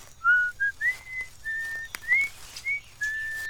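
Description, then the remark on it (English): Someone whistles a short tune of clear, sustained notes, several rising glides and held tones in an unhurried phrase, fairly loud with no talking. “I like you better when you're whistling.”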